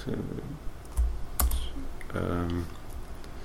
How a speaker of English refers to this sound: This is live typing, people. This is exciting, isn't it?